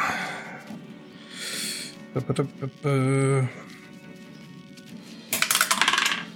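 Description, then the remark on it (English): Dice clatter across a tabletop during a game, landing a natural 20: a few sharp clicks early on, a short voiced sound, then a longer rattling tumble near the end over faint room noise. “That's a natural 20, baby!”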